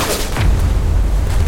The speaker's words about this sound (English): Those explosions. That gunfire.